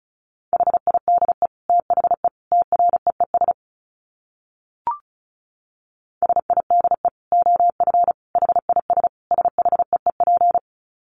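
Rapid Morse code at 35 words per minute, keyed on a single steady mid-pitched tone: two fast runs of dits and dahs separated by a few seconds of silence broken by one sharp click. No voices.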